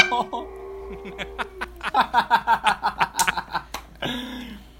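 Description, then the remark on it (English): A goose call is blown in a quick series of loud, reedy honks, ending with a longer drawn-out honk. A faint sustained tone lingers underneath at the start. “He always does that when I do duck and goose calls.”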